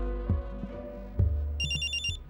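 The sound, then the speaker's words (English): A cell phone rings with a bright electronic trill near the end, cutting in over a low humming drone and a few heavy thuds. No one speaks. “My cell phone woke me 20 minutes before I was due back at the Temple of Justice for my morning debrief.”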